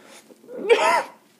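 A single sneeze, with a short breathy build-up and then a loud burst lasting under half a second, fairly clear, with no talking over it.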